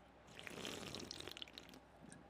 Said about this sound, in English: Oh, shit. That's still hot. excuse me. That was me sipping on a delicious cup of the Panama Blend.